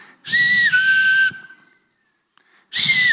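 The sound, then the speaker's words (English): A loud, piercing whistle made by a woman through her teeth only, breathy and hissy around a steady high tone that dips slightly, held for about a second, then a second blast starts after a short pause. “Hers was a teeth-only whistle.”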